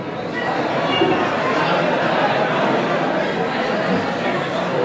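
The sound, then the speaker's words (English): A church audience during a sermon, people turning to chat with their neighbours, many overlapping voices forming a steady, dense murmur with no single speaker standing out, sustained at an even loudness throughout. “Why don't you turn to the person beside you and say, are you a committed?”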